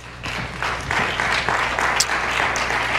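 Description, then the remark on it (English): A roomful of worshippers applaud together, giving the Lord a hand clap during a prayer service, a dense, steady wash of hand claps filling the space for a few seconds, with a low hum running underneath. “Why don't you just give the Lord a hand clap one more time?”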